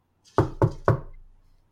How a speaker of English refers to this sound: And I knock. Oh, you knock. Insert knocking noises here.